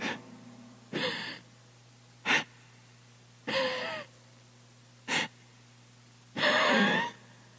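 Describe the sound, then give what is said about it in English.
Shallow, labored breathing demonstrated by a speaker: three strained, raspy gasping inhales, each followed by a short sharp exhale, in an uneven rhythm over a faint steady hum. “Try breathing shallow for hours on end.”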